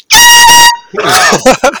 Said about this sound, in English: Oh, it says air horn right on it. I guess that is official air horn merchandise. That's what it is.